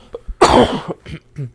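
A loud, harsh cough from a person who got sick bursts out, followed by a couple of smaller rasping coughs and throat noises over about a second and a half, with no talking.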